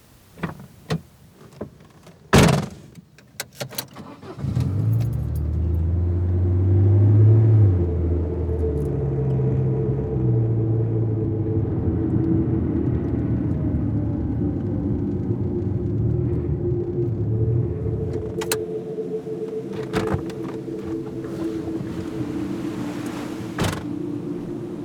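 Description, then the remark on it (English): A car door shuts with a couple of sharp thuds, then an engine starts and a low, steady rumble of the car driving down to the bay on a cold, windy day carries on, with a few faint clicks and knocks along the way. “Hey, you think you can go for a short drive?”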